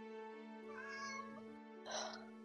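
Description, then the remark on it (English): A cat named Cheshire meows twice in quick succession, wanting to be fed, the second call shorter and more insistent, clear over a steady low electronic hum in the background. “He's been meowing the entire time we've been playing.”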